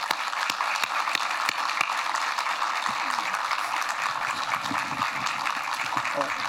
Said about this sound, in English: I'd like everybody to give both them and Mary Pat Higgins, who has provided this wonderful space for us, and Liz Brailsford, the chairman of the World Affairs Council, a big round of applause.